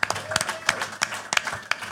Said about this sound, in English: Please, big round of applause for Mr. Cole Stratton.